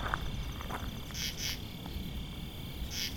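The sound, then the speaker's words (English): A katydid calls at dusk in Saltfleet Township, east of Hamilton, Ontario, with short, raspy bursts repeating every second or so over a steady high-pitched insect drone, set against a low rumbling outdoor background with no voices. “Not a grasshopper, is my guess. Maybe a katydid of some kind.”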